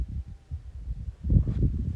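Low, blustery wind rumbles across the microphone in uneven gusts, growing stronger and more buffeting in the second half, with no voices present.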